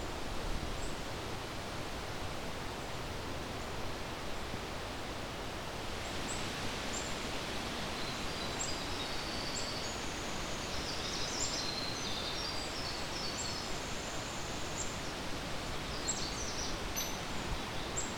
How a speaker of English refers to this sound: The hairy woodpecker.